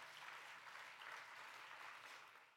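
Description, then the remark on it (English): A church audience claps their hands together in praise of Jesus, a dense, steady burst of applause lasting a few seconds, then beginning to fade slightly toward the end. “Can you give Jesus one hand clap of praise?”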